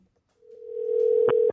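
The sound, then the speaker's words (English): A steady electronic phone tone hums for about a second as an outgoing call rings, swelling slightly in loudness before cutting off with a couple of sharp clicks. No one speaks. “All right, let's see if she even answers the phone.”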